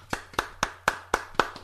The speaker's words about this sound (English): That clap is in stereo, not in the middle channel.